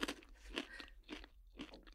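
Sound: crunching on a snack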